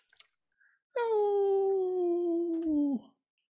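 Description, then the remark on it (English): A single sustained howl from Thurston the dog, lasting about two seconds, loud, holding a steady tone that slowly sinks before breaking off, with a couple of faint clicks before it begins. “You can make him howl.”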